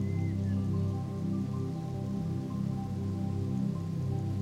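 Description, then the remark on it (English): Water from small waterfalls flows peacefully around a pool of calm water in a steady, unbroken wash, full and low-pitched with a soft patter on top, holding an even level throughout with no voices. “Water flowing peacefully.”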